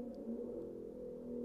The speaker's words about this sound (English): Sorry about that. There's a motorcycle, obnoxiously.